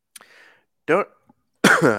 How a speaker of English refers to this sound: Sorry for the cough.